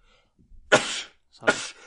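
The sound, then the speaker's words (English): Two sharp, explosive sneezes close together, the first preceded by a quick intake of breath, both loud with a brief pause between them and no talking. “That was my last sneeze.”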